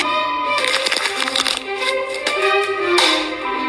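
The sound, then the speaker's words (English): Hammering: a series of sharp, irregular knocks and cracks over a dense, loud wash of ringing, buzzing noise, with no voices. “Stupid hammering.”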